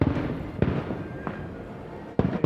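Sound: fireworks exploding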